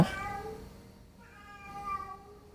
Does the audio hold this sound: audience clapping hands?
no